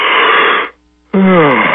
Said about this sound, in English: And the funny thing about yawning is that not only is it contagious, it actually slows down the metabolism in those parts of your brain that generate anxiety. So you can fake a yawn.